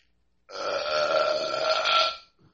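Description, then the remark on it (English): A long, drawn-out burp, made with the phone pulled away from the face, lasting nearly two seconds, loud and steady with a raspy, tonal rumble, standing alone with no talking over it. “I pulled the phone away from my face to do that.”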